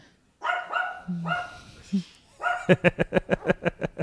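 A dog lets out a few drawn-out, whiny barks, then breaks into a fast, steady run of about ten sharp, loud barks.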